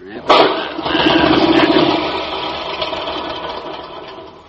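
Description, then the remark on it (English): A lawnmower fitted with a duck-back waterproof magneto for quick starting starts with a sharp, sudden burst, then settles into a loud, steady, buzzing run that slowly eases off over a few seconds. No one speaks. “This model's got a duck-back waterproof plankophonic magneto, assuring quick starting, Molly. Don't tell me. Tell the lawnmower.”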